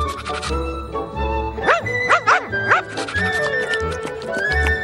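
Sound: puppy barking and yipping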